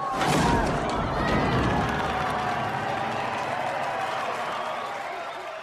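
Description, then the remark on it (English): A large audience gives a standing ovation at a show's finale, clapping and cheering in a steady, dense wash of applause with whoops and shouting voices mixed in, loud throughout and tapering only slightly toward the end. “He tosses him into the piano, and everyone's like, yay, applause. Standing ovation.”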